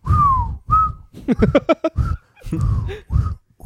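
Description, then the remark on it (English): A person whistles a falling tone, mimicking a dropping grenade, then adds quick breathy mouth bursts and a few more short whistled notes, fairly loud with no talking. “What kind of whistle? Huh? Grenade whistle.”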